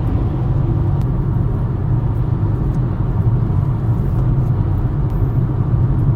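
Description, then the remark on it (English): Steady low rumble of a 2023 Kia Rio driving along the road on a long drive south to Northern California, engine droning evenly under constant tire and road noise, with no one speaking. “Welcome, 2023 Kia Rio. One of your first jobs is to drive me 8.5 hours south to Northern California.”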